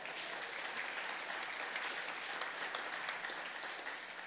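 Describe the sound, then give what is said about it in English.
An audience claps together in a dense, steady burst of applause that holds at an even loudness for several seconds, with no voices standing out. “Come on, give this house a hand clap tonight.”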